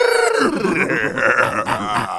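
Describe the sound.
A voice imitates a coyote mating, letting out a continuous run of loud, wavering yowls and throaty grunts that rise and fall in pitch for about two seconds.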